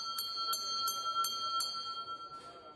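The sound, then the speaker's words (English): A pub bell rung briskly for last orders, five quick clangs in a steady rhythm, its bright metallic ring hanging on and fading after the final strike. “For last orders at this week's Crowd Sorcery, Tom Abbott, Green Easy, and Bream Assessor.”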